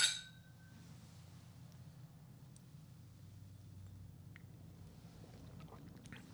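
A single bright clink of glasses in a whisky toast rings out at the start, then fades into a quiet low hum with a few faint, soft mouth and glass sounds, like a quiet sip of the whisky.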